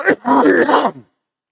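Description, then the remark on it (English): A single loud cough: a sharp explosive burst that runs into a drawn-out, throaty, groaning rasp lasting about a second, with nothing else around it. “if you could just remember to cover that when you cough, because it's so loud, and I never remember to cover it until after I've coughed.”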